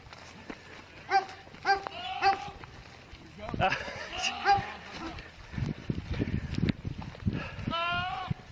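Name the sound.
goat bleating loudly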